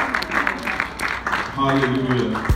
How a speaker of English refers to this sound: Please, let's receive our proper applause, please.